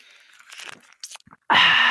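A noisy slurp of someone sipping a drink from a Stanley tumbler cup, with soft wet mouth sounds and clicks leading into a loud, steady sucking rush at the end.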